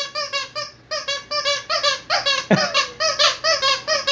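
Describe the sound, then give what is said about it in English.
A dog's squeaky toy squeaks again and again, a rapid run of about a dozen loud, high, wheezy squeals in an uneven pumping rhythm, each rising and falling in pitch. “My dog has a squeaky toy. What the hell is that? It's a squeaky toy.”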